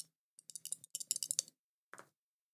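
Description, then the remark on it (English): Two dice rattle and tumble across a hard surface, a quick flurry of sharp clicks and clacks lasting about a second, then one last isolated clack as they settle. Fairly quiet, with no talking. “God, I need more than two dice in this.”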